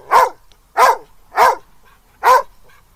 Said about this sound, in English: Okay, so what's that guy saying? He's kind of scared, I think. It kind of knows what it's barking at, maybe a squirrel, but the squirrel could attack him at any time. So I think he's kind of scared.